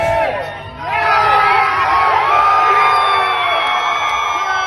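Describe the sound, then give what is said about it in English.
A loud crowd erupts into sustained cheering while people slap hands, high-five and hug, many overlapping voices whooping and yelling at once, swelling after a brief dip and staying at full intensity throughout. “I mean, that was like 15 minutes of just cheering and people slapping, giving high-fives.”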